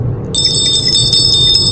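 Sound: phone going off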